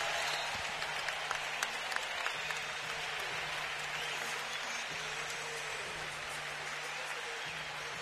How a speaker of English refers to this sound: And listen to the ovation as they introduce Al Addles to the crowd here at Oracle.